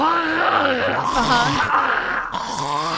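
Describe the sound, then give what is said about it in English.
A voice imitates a man clearing his throat: a loud, gravelly, groaning rasp that rises and falls in pitch, rumbling on for about three seconds with no words. “I can hear him clearing his throat now.”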